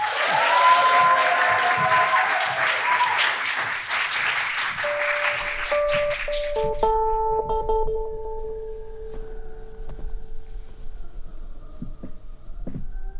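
A crowd claps loudly with dense, steady applause for about six seconds, then the clapping thins out as sustained musical tones and a low hum take over.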